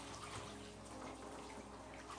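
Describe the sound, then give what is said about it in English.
A woman steps into the warm water of a baptismal pool, causing a steady, soft sloshing and swirling of water that continues for a couple of seconds, fairly faint, with no voices. “She stepped into the water and went, oh, praise God.”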